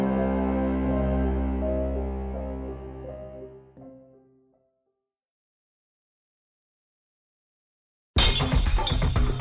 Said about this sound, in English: The beer bottle shattered on the pavement of the half-empty parking lot.